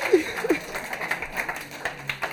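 An audience claps steadily, a dense rattle of many hands with sharper spikes throughout, and a brief voiced whoop rises at the start.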